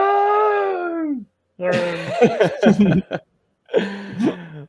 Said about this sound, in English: Makes a Wilhelm scream.